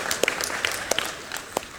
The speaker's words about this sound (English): Some of you are not clapping and you're lying.